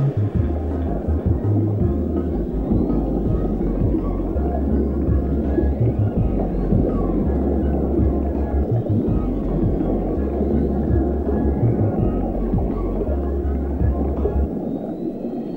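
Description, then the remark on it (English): Instrumental theme music plays steadily and fairly loud, built on a deep, stepping bass line with gliding, whale-like swooping tones drifting over it; no voices. “Theme music.”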